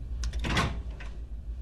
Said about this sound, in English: Closing the door.